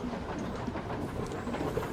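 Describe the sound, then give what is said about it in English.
A steady, dense rumble of a metro train running deep underground through a tunnel, heard from the driver's cab on a trip from Zlichin station; continuous low roar with faint clattering and hiss throughout, enveloping, no voices. “I then traveled deep underground in order to ride in the driver's cab with a train operator”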